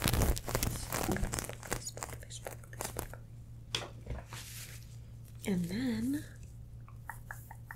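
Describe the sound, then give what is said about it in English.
Scratching and crinkling of the fabric of a rhinestone-covered bikini during a try-on, a busy run of rustling, scraping bursts. It eases off midway, with a short wordless vocal murmur before faint scratches resume. “ramble, fabric scratching”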